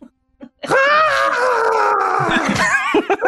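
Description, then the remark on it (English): A person imitates the high-pitched scream of a skinwalker creature: one long, wavering, strained wail lasting about two seconds, loud and harmonically rich, ending in a few short breathy yelps. “What does your imitation of those creatures sound like?”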